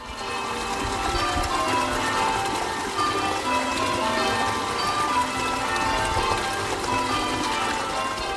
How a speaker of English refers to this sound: Whilst out this weekend walking in my village of East Morling in Kent, I got to a point where I could hear the stream and the church bells ringing.